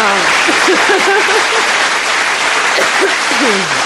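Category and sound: crowd, applause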